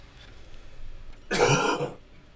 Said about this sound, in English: And go ahead, mute me, I've got a cough.